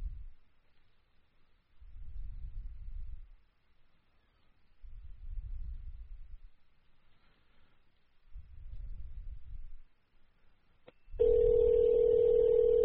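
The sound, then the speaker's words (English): A telephone call to a casino, trying to reach a pit boss or casino host, rings through the line: three evenly spaced, low, buzzing rings with quiet gaps between, then a click as the line connects into a louder steady hum. “We're going to call back and get the gambling, get to a pit boss about this.”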